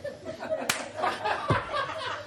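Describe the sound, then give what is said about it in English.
One sharp, loud hand clap, the traditional cool room clap, rings out early on, set against a steady murmur of voices and light laughter that carries on after it. “the traditional cool room clap there.”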